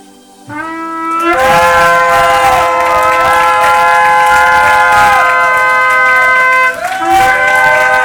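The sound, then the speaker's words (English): An audience at a prayer meeting lifts up a shout, erupting in loud, sustained shouting and cheering, a dense roar of many voices lasting several seconds, with bright held organ-like tones swelling and bending above the crowd. “Y'all ready to lift up a shout with me one more time?”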